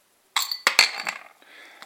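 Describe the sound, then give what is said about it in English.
A beer bottle cap is pried off with a De Helder Bruges bottle opener from the Netherlands: a few sharp metallic clinks and scrapes, followed by a brief soft hiss of escaping gas. “I'm going to open it here now, because if you remember yesterday afternoon, the top fell in my glass.”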